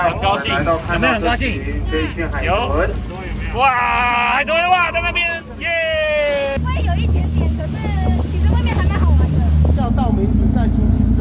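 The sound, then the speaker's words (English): Excited voices of passengers leaning on the railings shout and whoop in glee over a steady rumble of a boat engine and buffeting wind on the blue ocean, the low churning noise growing heavier midway as the craft pushes through waves. “Passengers lean on the railings as they ride the wind and the waves, shouting in glee.”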